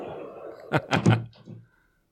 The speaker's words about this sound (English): Shut that door